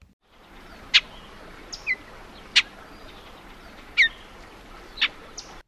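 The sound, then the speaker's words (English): A Bullock's oriole gives a series of short, sharp chattering calls, about five bright bursts spaced irregularly over a few seconds, heard alone against faint background hiss. “Bullock's oriole.”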